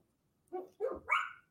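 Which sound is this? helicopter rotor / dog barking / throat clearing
dog barking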